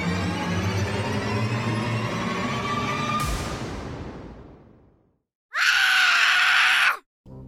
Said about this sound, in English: He couldn't contain it again. He let out a scream from the depth of his little heart.